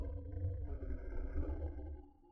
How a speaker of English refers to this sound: Wait. Did you hear that? What was that? That awful growling sound.